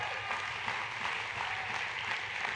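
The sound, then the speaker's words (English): A church audience at New Hope Church applauds steadily after hearing that close to 6,000 people attended Christmas Eve weekend services, many hands clapping at once in a dense, even wash of sound with no single claps standing out and no talking over it. “Now, I love the fact that you clapped for that, but what I'm about to share with you, I hope you clap a whole lot more because this is why we exist.”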